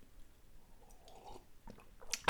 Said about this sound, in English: A slurp of tea, apologies for that.